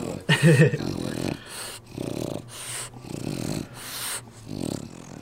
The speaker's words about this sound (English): Yeah. Apartment dog.